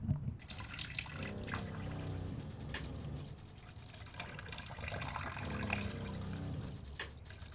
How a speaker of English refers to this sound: So I'm going to put on my hot water because that's the way that my gas boiler fires up. Fires up. Yes, fires up. Okay, let's do this. Let's put the hot water on. Plug in the sink.